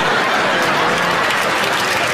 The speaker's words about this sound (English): I know a lot of y'all clapping out of pride. But I ain't clapping out of pride, because it pissed me the fuck off.